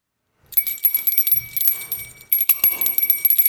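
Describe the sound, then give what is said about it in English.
A bright bell rings continuously for about three seconds to open a top-five game segment, its sustained high tones mixed with a jangly, shimmering rattle. The sound is fairly loud, with no voices. “Every time a bell rings, we give our top five.”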